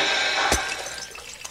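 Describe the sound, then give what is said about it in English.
A glass ball, dropped when a boy carrying it trips on the street above a sewer, shatters once with a sharp ring and a low thud, followed by a scatter of tinkling shards and faint splashy clinks trailing off over the next second. “A boy walking on the street above the sewer tripped. The glass ball he was carrying broke.”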